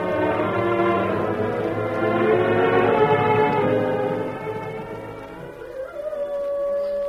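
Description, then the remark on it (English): A chorus of coyotes howls and yips from far off just before dawn, overlapping wavering cries that swell, then thin out to one rising howl near the end. No one is talking. “It was just before dawn when Millie was wakened by the crying of distant coyotes.”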